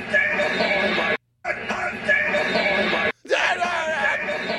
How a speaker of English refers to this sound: You hear someone screaming like, we got him on it.